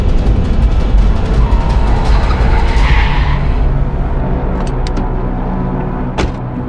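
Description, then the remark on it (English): Gordon's car brakes hard as he tries to swerve away from a woman in the road, its tires skidding loudly across pavement in a long, harsh screech, with engine rumble underneath that eases off toward the end, broken by a few sharp clicks. “Gordon slams the brakes and tries to swerve out of the way, but he's about to hit the woman when Batman rushes in and saves her.”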